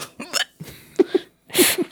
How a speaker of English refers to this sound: Waiting for the next hiccup.